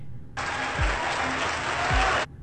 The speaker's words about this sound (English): Right. Like, I don't even, and listen to the applause.